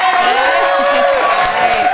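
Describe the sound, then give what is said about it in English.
A canned applause sound effect, played by one of the hosts for himself: a dense, steady wash of clapping mixed with cheering crowd voices, loud and continuous for the whole two seconds. “He only puts the clap for himself.”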